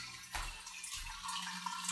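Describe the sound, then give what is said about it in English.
Water runs and trickles steadily into a fish tank that needs water, a continuous splashing hiss with a brief surge near the start and no voices. “A fish tank that needs water.”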